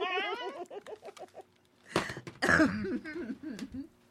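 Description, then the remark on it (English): A few harsh coughs burst loudly into the microphone, coming after a run of short, high, warbling vocal noises. “Cough into the mic and call it a day.”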